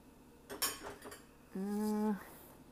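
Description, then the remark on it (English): Dishes and cutlery clink and clatter in a quick cluster of sharp knocks as a dishwasher is unloaded, followed by a steady, pitched squeak lasting about half a second as a piece is pulled free. “I hate when my dishwasher doesn't do its job.”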